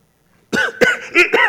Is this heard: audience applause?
no